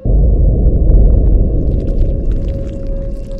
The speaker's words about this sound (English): Damn, sounds like Isaiah's hand cannon, but louder, if that's even possible.